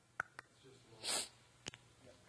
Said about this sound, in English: I have really bad allergies, so I sniff a lot. So bear with me, all right?